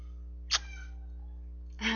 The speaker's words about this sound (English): The cat thought it was very good as well. She's just talkative.